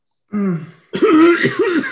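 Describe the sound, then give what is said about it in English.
A few loud, close, exaggerated coughs and throat-clearing noises, voiced and gravelly, in quick succession, with no other talking. “Covered by Gwen's loud coughing, I touch Barrister Aran's shoulder and cast guidance.”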